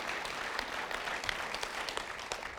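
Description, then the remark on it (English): An audience claps steadily for a few seconds for a man as he makes his way back, a dense, continuous patter of many hands with sharp individual claps poking through at an even, moderate loudness. “Let's give him a round of applause as he makes his way back.”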